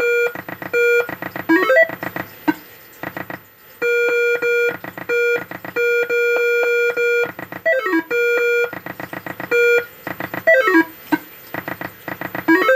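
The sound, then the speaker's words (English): Loud electronic beeps repeat in quick rhythmic bursts, broken by short gaps and occasional swooping chirps, like an alarm or electronic game sounding on and off, with no one talking. “For those of you just listening to this field report, I'll bet the annoying little beeps without any commentary over it are just the best thing ever to listen to in your ear holes.”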